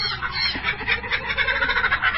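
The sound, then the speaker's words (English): A dense chorus of ducks and geese quacking and honking together in a farmyard just outside Kimberley, continuous and busy with overlapping calls, loud, no voices talking. “These are welcoming sounds of birds as you enter the yard of 8 Mile Farm just outside Kimberley.”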